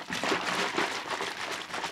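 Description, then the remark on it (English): A brand-new carton of almond milk being shaken hard, liquid sloshing in quick repeated bursts, fairly loud, with no voices. “Do you ever like open it fully and then reshake it? Because it's sort of vacuum sealed in there.”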